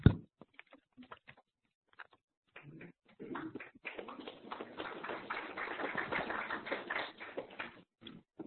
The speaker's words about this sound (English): Okay, you don't have to clap us in between, otherwise you'll spend a lot of time clapping.